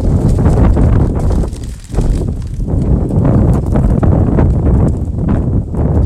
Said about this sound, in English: As I'm walking today, it's quite a blustery, windy day. That this wind is the air that I breathe.